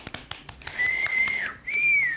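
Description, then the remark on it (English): A crowd cheers: a few sharp claps or taps, then a shrill, high whistle held in two long blasts with a brief break between them, the second bending slightly in pitch. No voices are heard. “From the cheers. Like, oh, be quiet, the crowd.”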